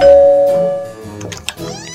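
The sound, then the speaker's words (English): A doorbell rung by trick-or-treaters on Halloween chimes, its bright ringing tones sustaining and slowly fading, followed by a few faint bumps and a softer second tone near the end. No one speaks. “Ring the bell.”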